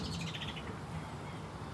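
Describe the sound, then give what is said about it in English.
Mistle thrush alarm calls from a bird perched on yew berries, a quick series of dry, rattling chatters early on, set against a steady low outdoor rumble, fading out after the first burst. “And I was going to say, we've got fantastic alarm calls coming off in the background.”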